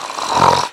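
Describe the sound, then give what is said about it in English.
A short-faced dog lets out one brief, raspy snore, a rough nasal rumble lasting under a second with no talking over it. “Does he snore? Yeah. Yeah. Like, he'll snore with his eyes open.”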